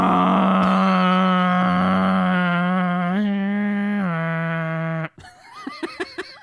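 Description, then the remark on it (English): A voice imitates a Boeing 747 jet engine with a long, steady, nasal droning hum that shifts pitch slightly in small steps for about five seconds, then breaks off into short bursts of laughter. “I don't think you're reading plane noises right.”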